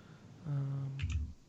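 A few quick, soft clicks as someone types on a computer keyboard with an unmuted microphone, following a steady low electrical hum. No one speaks.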